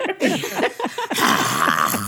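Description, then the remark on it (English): A woman growls and rasps in a throaty roar, imitating a dragon breathing fire, then pushes out a long, breathy hiss for about a second; fairly loud. “Well, because they're breathing fire.”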